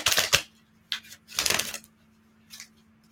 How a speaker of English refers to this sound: I'm going to give the cards that we're going to use a little shuffle-duffle.